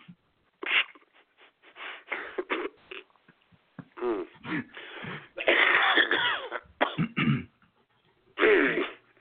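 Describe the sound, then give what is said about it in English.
A person coughs and clears their throat on the air, in a series of harsh, loud bursts spread over several seconds, with short pauses between fits. “You just made me cough on the air.”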